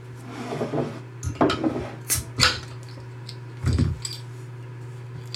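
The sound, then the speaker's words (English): A bottle of Victory at Sea beer, 10% alcohol, is opened and poured: a few scraping clicks and clinks, a sharp pop of the cap, then a short gurgling splash over a steady low hum, with no talking. “All right, why don't you go ahead and crack this and pour this for us?”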